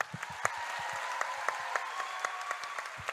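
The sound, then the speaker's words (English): An audience applauds a performer before he recites a rhyming poem he made up, with steady, overlapping claps from a modest crowd, even in loudness, with a faint sustained tone running underneath throughout. “Let's listen to him, but first, let's applaud his gracefulness and brilliance.”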